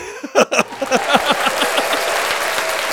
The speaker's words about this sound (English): We don't have bombs. We don't have bombs. Give me applause.